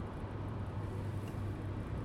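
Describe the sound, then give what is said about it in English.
A steady low rumble of car interior noise while driving to go fishing, with a constant engine and road drone filling the background and no voices. “And today I'm in a car and I'm driving fishing.”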